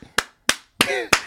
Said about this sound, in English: That's some claps right there